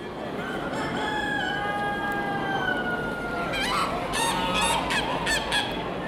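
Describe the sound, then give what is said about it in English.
Roosters crow in long drawn-out calls while ducks and geese honk and quack in quick bursts over a steady crowd-like background din, fairly loud, at the Salon de l'Agriculture, France's annual agricultural fair. “At the Salon de l'Agriculture, France's annual agricultural fair, you can listen to the calls of roosters and ducks, sit in a tractor, and test out fig-flavored sausage.”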